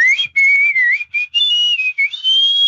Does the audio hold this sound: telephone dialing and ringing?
no